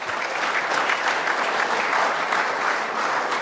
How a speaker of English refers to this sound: Thanks to all of our sponsors. And thank you, Brett Ledbetter, outstanding. How about a round of applause for him?